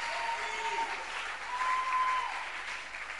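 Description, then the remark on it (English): A crowd applauds steadily, a dense wash of many hands clapping at once that swells slightly midway and holds for a few seconds, with faint tonal whistles or feedback lines threading through. “clapping, or you are now warming up, or I don't know.”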